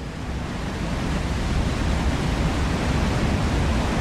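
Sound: rushing waterfall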